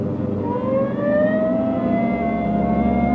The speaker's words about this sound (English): Hit the siren.